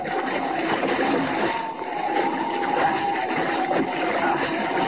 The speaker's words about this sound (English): That wave capsized the rowboat.